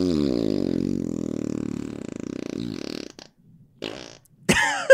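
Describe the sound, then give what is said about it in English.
A fart sound effect, replayed: a long, low, buzzing fart that sputters for about three seconds, followed by a brief pause and a couple of short, squeaky bursts at the end, loud. “Can I hear that one more time?”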